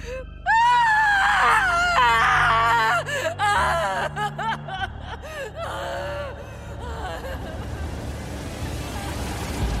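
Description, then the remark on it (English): A person screams and wails in terrified, heartbroken anguish, loud, breaking into sobbing gasps and whimpers, while a steady rumble of an engine or moving vehicle fills the background toward the end. “The crickets, the frogs, and finally, my terrified, heartbroken screaming.”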